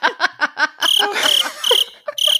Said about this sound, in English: Tell Kim in post, she's got to insert a cricket sound right there.